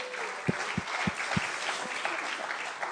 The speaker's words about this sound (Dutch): We give Hans a hand. He's laten we Hans een geweldig applaus geven.